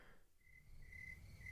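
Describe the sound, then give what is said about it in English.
A steady, high-pitched cricket trill, played as a sound effect, repeats in short bursts over a low background hum, fairly clear with no one talking. “You got that cricket sound?”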